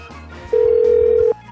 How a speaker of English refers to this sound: Telephone is ringing.